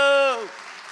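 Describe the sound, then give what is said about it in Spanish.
A sustained voice trails off and gives way to a steady wash of audience applause, many hands clapping together at moderate loudness. “A ver ese aplauso.”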